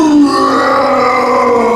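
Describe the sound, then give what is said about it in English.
During a game, a person voices a creature's bellowing roar as it stands up on its hind legs: one loud, sustained, growling cry that holds steady for nearly two seconds, with a harsh, throaty edge and no words. “Let out this bellowing roar.”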